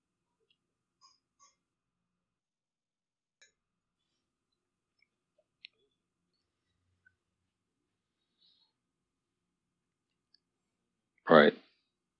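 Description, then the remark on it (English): Faint, scattered computer keyboard taps click irregularly through long stretches of near silence, a few isolated keystrokes rather than steady typing, before a sudden loud burst right at the end. “excuse the typing.”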